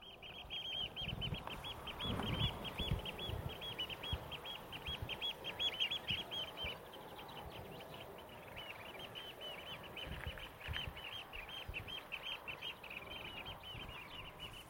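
A small flock of oystercatchers on the shore by a coastal seawall at a nature reserve, too far away to see in the haze, call continuously in a busy chorus of shrill, high piping notes, overlapping and repeating rapidly, over a steady low rumble of wind or surf. No one speaks.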